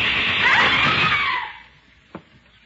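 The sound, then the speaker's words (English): A loud, shrill scream from a woman lasts over a second and then trails off, followed after a brief pause by a single sharp gunshot that hits a movie projector. “And when you hear shots, scream.”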